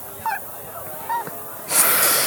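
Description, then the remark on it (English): A voice imitates a honking bird with two short, nasal honks spaced about a second apart, fairly loud, followed by a sudden burst of harsh, hissy noise. “That's what the bird said.”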